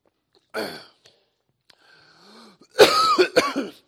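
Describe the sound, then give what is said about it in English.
A single harsh cough, then a quiet wheezy breath and a strained inhale, followed by a burst of loud, sputtering, choking coughs, after someone swallowed a flying insect. “I didn't know there was anything flying around in here. But I think I swallowed it.”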